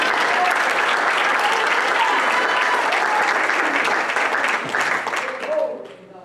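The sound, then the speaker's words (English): An audience claps hands to the Lord in a dense, steady burst of applause, loud and sustained, with a few voices calling out underneath before the clapping thins and fades at the end. “Can somebody clap your hands to the Lord right now?”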